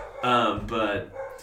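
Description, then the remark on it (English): A dog barks twice in quick succession, fairly loud, the barks drawn out and tonal, followed by a softer trailing yelp. “You can hear that. That's Token's dog is barking.”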